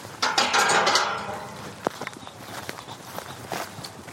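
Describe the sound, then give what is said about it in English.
A double garden gate is opened with a scraping, rattling rush of noise, then sharp clicks and a series of footsteps as someone walks through. No voices are heard. “Going through the gate.”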